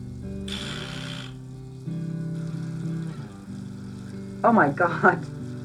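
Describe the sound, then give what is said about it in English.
Washing dishes with a sponge: a brief hiss of running water, then a couple of short squeaky scrubbing sounds, over a low steady background hum. “I'm washing dishes and I can't stop smelling it.”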